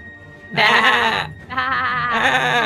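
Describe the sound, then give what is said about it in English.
Two loud sheep bleats in quick succession, each a wavering, quavering cry lasting under a second, with a brief gap between them and no talking. “There's just a bunch of sheep running away from a werewolf.”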